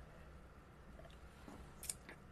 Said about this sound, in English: But I'm going to sip my next to last sip of beer.